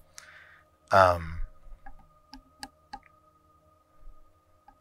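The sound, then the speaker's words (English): Dice clatter on a table in a handful of sharp, quick clicks, clustered together and followed by one last tap, after a brief loud vocal sigh near the start. “Since I was already rolling stuff.”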